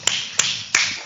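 Applause: four sharp, evenly spaced claps ring out over a steady, hissy wash of clapping that continues between them. No voices are heard.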